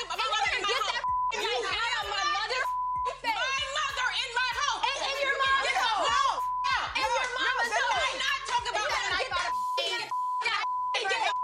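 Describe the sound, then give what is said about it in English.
A steady, high-pitched censor bleep tone runs almost continuously beneath loud, animated speech, with the talking breaking off briefly a few times while the tone holds. “Carla, can I get that without the beeps?”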